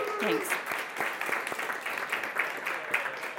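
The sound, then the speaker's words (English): A church audience breaks into steady applause for the council at a Sunday service, many hands clapping in a dense, crackling wash that holds level for a few seconds, with a brief vocal sound near the start. “So if you would give the council a round of applause.”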